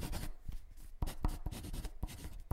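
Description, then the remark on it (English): A pen scratches quickly across paper in a run of short, irregular strokes with small taps between them, a dry, papery sound at a fairly quiet level with no voices. “I hope your pen's got plenty of ink left in it.”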